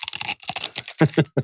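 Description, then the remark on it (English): Crisp crunching of a Doritos tortilla chip being chewed: a run of rapid crackly bites, then three louder separate crunches near the end, with no talking. “Now there's a lady like crunch for you right there.”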